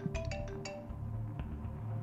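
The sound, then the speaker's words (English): A cell phone rings with a quick run of bright, chiming electronic tones over a low background hum, the notes repeating in a short melodic burst before fading. “Our story begins and our scene opens with the sound of a ringing cell phone.”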